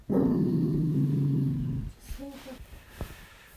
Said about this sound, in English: Why do you keep barking? Oh, it's Mushaka, huh? Don't bark at Mushaka.